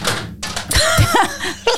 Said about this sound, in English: Oh, knock the keyboard off.